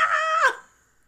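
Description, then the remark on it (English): A person's voice mimics a bird with one short, nasal squawk, fairly loud, its pitch dipping sharply at the end before fading into silence. “Oh, we're doing bird sounds.”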